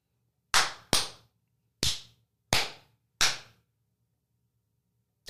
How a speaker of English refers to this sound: Clappy claps. Yeah. All right. So you just clap in front of the mic. Yep.